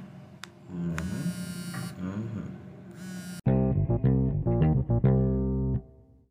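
Electronic frequency tones play with no talking: a droning, buzzy hum first, then a louder, brighter tone that stutters in short bursts with brief gaps before cutting off.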